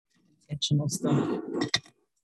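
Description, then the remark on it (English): Pens clatter, with a burst of small clicks and clinks as they fall and are scooped back together, then a final sharp tap, all over a low murmuring voice. “My thing pens just fell.”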